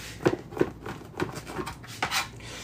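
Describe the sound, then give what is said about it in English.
A knife chops strips of food on a cutting board in a series of sharp, fairly evenly spaced taps, moderately loud, with no talking. “And then we're just gonna kind of chop it. We're chopping them.”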